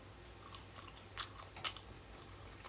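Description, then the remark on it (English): New KFC chips being chewed, with several sharp, crackly bites at an irregular rhythm over a steady low hum. No one speaks. “So, the new KFC chips, they've been like salted in something.”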